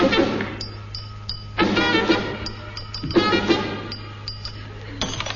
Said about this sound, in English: Now a little melody using 3 ordinary glasses of water. 1, 2, and 3.